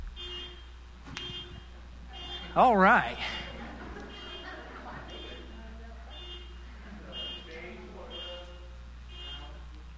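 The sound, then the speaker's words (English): A short, loud electronic alarm warbles up and down for about a second as a five-minute time warning for a speaker, standing out over steady background noise, with a person talking quietly before and after. “he said, in five minutes before it's time, please somebody hit their alarm”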